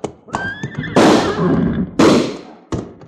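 A horse whinnies briefly in a high, wavering cry, then several loud, sharp gunshots crack out, echoing between them, one shooting a gun out of a man's hand, with no one speaking.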